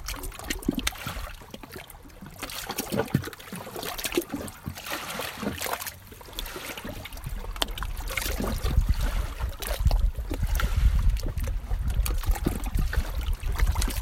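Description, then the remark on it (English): Lake water at Lake Monroe in southern Indiana laps and splashes against rocks in a steady, irregular rhythm, with soft trickles and gurgles and a low rumble of waves underneath. No one speaks. “You've been listening to Water on Rocks at Lake Monroe in southern Indiana.”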